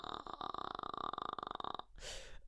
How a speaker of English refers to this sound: Oh, God. Jesus Christ. Right, hopefully you never heard that one as well. Maybe you get one burp per podcast as well. Oh, Jesus Christ, I don't like that. It's becoming a regular thing.